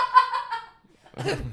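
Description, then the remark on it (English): A voice imitates the hollow thud of a person falling on a floor, first a drawn-out nasal tone, then after a short pause a rough, cough-like burst. Fairly loud, with no other sounds. “Oh, it's like a thug, like a hollow thud with a, you hear that? Like this, a kind of cough.”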